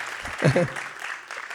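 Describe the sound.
Steady audience applause for a guest producer and composer, a dense wash of clapping that carries through the whole moment, with a brief voice speaking over it near the start.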